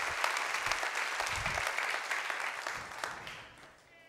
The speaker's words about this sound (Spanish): Démosle un aplauso al Señor por eso,